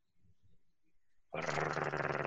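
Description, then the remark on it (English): A person imitates a cat's growl: after a second of faint low rumbling, a loud, harsh, raspy vocal growl bursts in and holds steadily for about a second. “Like a cat growl, not a bear growl, or whatever the hell I just did.”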